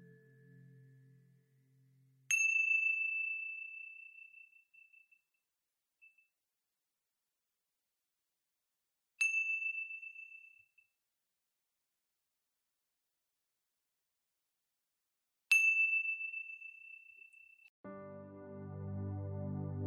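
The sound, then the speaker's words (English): A meditation chime is struck three times at slow, even intervals, each bright ring fading gradually into silence. Faint low sounds appear briefly at the very start and end. “Wiggling your fingers and wiggling your toes, and when you you hear the sounds of the chime, listening all the way through and gently coming back to each other.”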